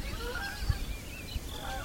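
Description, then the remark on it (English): A large flock of about 60 or 70 geese honks overhead while flying over Saginaw Bay, many overlapping calls blending into a continuous chorus above a low rumble of wind. “huge flock of geese”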